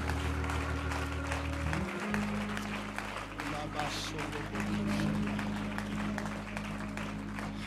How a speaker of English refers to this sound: Before we get into the word of the Lord, why don't you clap your hands and give the Lord some praise in this place?